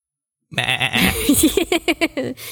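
A goat bleats loudly, starting with a long wavering cry that breaks into a rapid, stuttering series of short bleats, with no talking.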